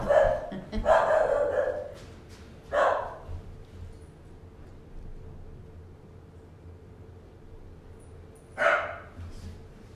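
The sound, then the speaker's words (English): A dog barks several times in quick succession, pauses, then gives one more bark after a long gap, all over a low steady background hum. “Besides getting a dog that's barking.”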